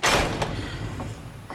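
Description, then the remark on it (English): A door bangs shut with a sharp, loud impact, followed by a brief rumbling decay and a couple of faint knocks as the room settles. No voices are heard. “Hey, don't let the door close!”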